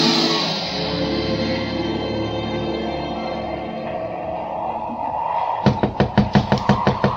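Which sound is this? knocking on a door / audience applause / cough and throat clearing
knocking on a door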